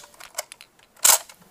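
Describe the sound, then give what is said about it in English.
A few small plastic clicks and ticks lead up to one loud, sharp snap as the wings of a Buzz action figure from Toy Story spring open, then a couple of faint rattles afterward. No one speaks. “The wings pop open.”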